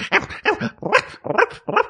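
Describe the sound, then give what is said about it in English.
A person imitates a puppy's yappy barks, five short, high, bright yips in a quick, even rhythm, fairly loud, with no other voices. “Oh, that's because you're a puppy.”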